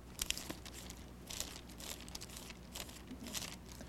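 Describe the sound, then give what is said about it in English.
Soft, crisp paper rustling as Bible pages are turned, several brief crinkly flicks arriving at an uneven pace, fairly quiet, with no voices. “I hear all those pages turning on those computers out there.”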